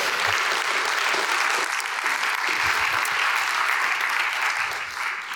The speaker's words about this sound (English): So why don't you go ahead and give them a round of applause.